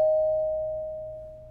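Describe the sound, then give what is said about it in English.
A doorbell sounds a single bright chime, striking sharply and then ringing out as one steady mid-pitched tone that slowly fades, with no voices present. “Thank you for answering the door.”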